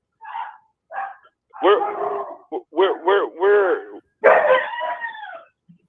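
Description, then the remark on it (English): A dog barks and yelps in a quick, uneven series of about eight sharp, high-pitched calls, fairly loud, with brief gaps between them and no other sounds. “What are you doing to your dog? Is that you in the back?”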